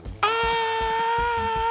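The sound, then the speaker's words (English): A voice imitates a character's powerful scream of rage during a role-playing game, bursting into a loud, sustained scream held at a steady, strained pitch to the end, with a low rhythmic thumping pulsing underneath. “like this scream of rage.”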